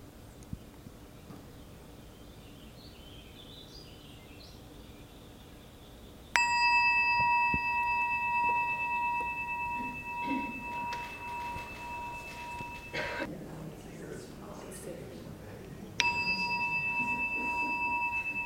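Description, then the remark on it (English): A meditation bell is struck during a guided meditation practice after a quiet stretch and rings with a long, clear sustain, then fades before a second strike rings out near the end. “So just as the bell rings, you might explore the becoming now.”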